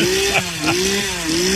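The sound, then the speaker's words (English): A chainsaw engine drones loudly and steadily, its pitch rising and dipping slightly as the throttle is revved by a person dressed as a clown on Halloween, in front of a frightened little boy about two years old; no voices present. “Clown with a chainsaw and a 2-year-old kid.”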